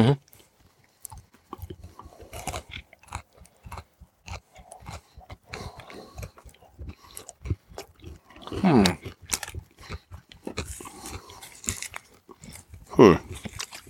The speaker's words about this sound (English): I don't see the potato chips. I taste them. And they're crunching. They're intermingled with the peanut butter.